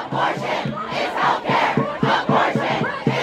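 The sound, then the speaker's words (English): A loud crowd of protesters chanting in unison outside the Supreme Court building in Washington, D.C., after the leaked draft opinion to overturn Roe v. Wade, their voices rising in steady, rhythmic bursts about twice a second, with a continuous murmur of many people underneath. “And as news spread, a crowd formed outside of the Supreme Court building here in D.C.”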